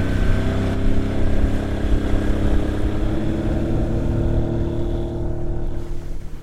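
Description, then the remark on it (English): A motorboat engine roars loudly and continuously on the Lake Powell reservoir, a dense droning hum with a steady, slightly rising pitch as the throttle is cranked open to get the boat on plane. No one speaks. “Okay, I'm gonna crank it. Let's see if we can get on plane.”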